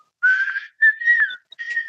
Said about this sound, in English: And at first you take a moment to listen to this song that is being whistled almost by wind.